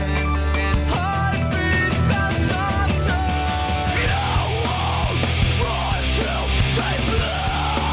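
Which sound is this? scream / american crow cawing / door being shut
scream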